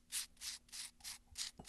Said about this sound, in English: And now I'm going to carefully pour my pigments into that jar. I don't want to spill any of it because it's pretty precious stuff.